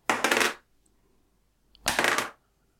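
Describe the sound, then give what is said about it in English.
A handful of dice, rolled for damage in a game, rattles and clatters across a tabletop in two short bursts, a pause between them, fairly loud with no talking. “That's a lot of dice.”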